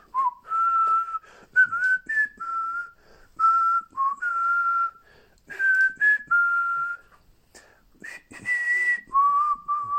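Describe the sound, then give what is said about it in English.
A person whistles a melodic tune alone in a normal whistle, with clear sustained notes in short phrases separated by brief pauses, fairly loud, with soft breathy noise between phrases. “That's the normal whistle, right?”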